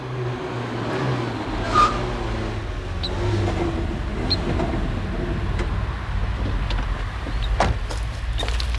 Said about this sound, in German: Ein Auto kommt!